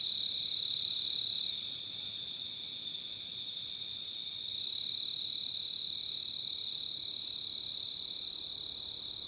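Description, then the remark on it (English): A cricket trills steadily and without pause near dawn, a high, shrill, continuous chirring that stays even in volume over a quiet nighttime background with no voices. “There it is, the first song of the day, and maybe the last cricket of the night.”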